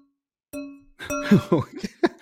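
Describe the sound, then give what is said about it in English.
A wine glass is struck twice, each clink leaving a clear, ringing tone that fades, followed closely by voices talking and laughing. “I got the glass o' wine.”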